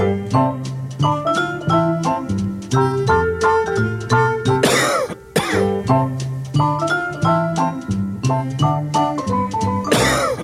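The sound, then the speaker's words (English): A bright, bouncy advertising jingle for Vicks medicated cough drops plays in steady rhythmic notes, broken by a few loud, harsh coughs partway through and near the end. No one speaks. “Yeah, so this would be a great sponsor if we can get them. Okay. Give it a listen.”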